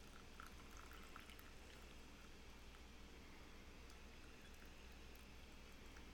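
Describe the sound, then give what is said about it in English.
A slow, steady stream of water is gently poured over leaves, letting them melt underneath the stream, a soft continuous trickle and splash heard for several seconds with no voices. “And from this place of very keen present moment awareness, then we move forward to be able to add water over our leaves, nice and slow.”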